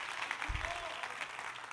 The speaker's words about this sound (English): Clap your hands to the Lord and stand with me this morning.